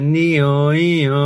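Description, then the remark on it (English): A person vocally imitates the first of an ambulance's three siren sounds, a steady voiced tone sliding up and down in two smooth wailing cycles, loud and sustained with no other sounds. “Each ambulance we've got has got three different sounds. Is it? Give us a quick demo. Ambulance sound one.”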